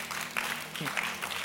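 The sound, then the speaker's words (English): An audience at a sermon breaks into steady, dense applause, a continuous wash of many hands clapping at an even level for about a second and a half, with a brief voice rising faintly underneath. “I thought you clap.”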